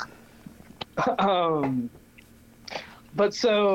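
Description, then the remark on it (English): Wet chewing with irregular smacking clicks as a person chews loudly, mixed with brief voiced sounds, over a low background hum. “chewing too loud over here, that's maddening.”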